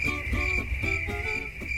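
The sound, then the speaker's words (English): Crickets chirp in a steady, high-pitched trill that runs unbroken for the whole moment, with no one speaking and a faint low rumble underneath. “Crickets. Crickets from Haley's side of the table.”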